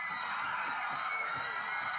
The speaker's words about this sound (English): Man, women scream like crazy. They just go nuts.